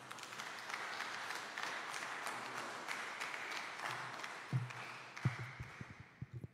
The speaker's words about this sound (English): To take us further to our program, please put your hands together and give a round of applause for